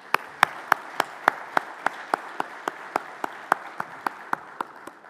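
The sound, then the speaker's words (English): An audience applauds, with steady rhythmic claps standing out sharply above a softer wash of scattered clapping, continuing at an even pace for about five seconds without any talking, a round of applause for Sun Belt football coaches and student athletes after the 2022 season. “Let's give a round of applause to all of our football coaches and student athletes.”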